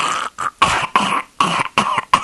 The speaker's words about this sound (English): Excuse me, I got a cough.